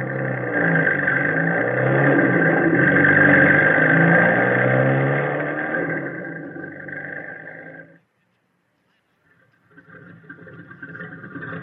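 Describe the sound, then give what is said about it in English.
A jeep engine rumbles and growls loudly for several seconds, then fades steadily as the vehicle drives off, dropping to silence before a softer engine-like hum returns. “Me and my pals are in a hurry. And thanks for the Jeep.”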